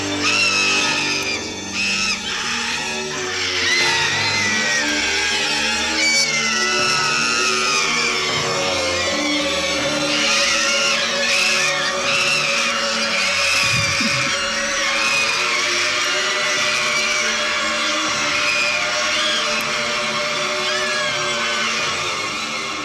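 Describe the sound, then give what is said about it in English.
A crowd of boys, Boy Scouts in a film scene, scream, shriek and run nonstop, a loud, chaotic wall of high-pitched voices that stays intense for about 25 seconds. “Just like, it's a solid 25 seconds of just children screaming and running, which is...”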